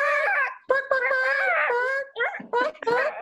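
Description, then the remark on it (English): A boy imitates a chicken for a chicken-impression contest, with a run of loud, high-pitched, wavering squawks and clucks, about four or five voiced bursts in quick succession. “All right, we're going to do our chicken impression, okay?”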